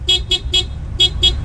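A car horn honks at a woman walking on the street in a quick patterned rhythm meaning 'I love you': three short beeps, a brief pause, then three more, loud over a low engine rumble.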